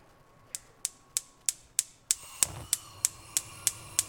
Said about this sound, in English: You know what that is? It's when you're turning on that stove and it's trying to light. Play it one more time.